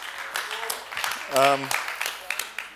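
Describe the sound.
An audience applauds again for a pastor after his message, a steady wash of scattered claps, with a single voice rising briefly over the noise midway through.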